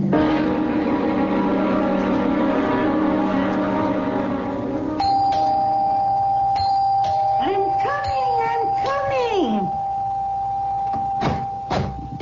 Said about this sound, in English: Rip the bell off the door, young man.